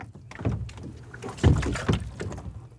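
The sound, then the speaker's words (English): A kayak glides through the water of Brentwood Bay on Vancouver Island on a chilly day, the water about 8 degrees, with a few splashing paddle strokes and steady sloshing and dripping between them. No one speaks. “And best of all, she's brought a kayak, so we won't actually have to get wet.”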